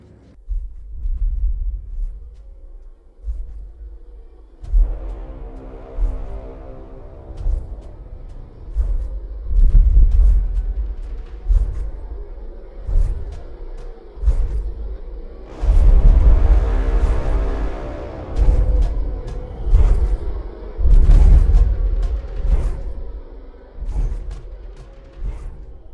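Epic war march music with heavy, booming drum hits and swelling brass-like chords, slow and martial, playing loud and steady with no voices.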